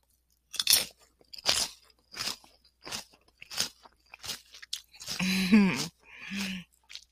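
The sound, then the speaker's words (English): Crunchy chewing of a small, baby-sized piece of food, a steady series of sharp bites roughly every half second, followed by a brief voiced sound and a soft murmur near the end. “Watch, this one's not going to be that crunchy because this is a baby one.”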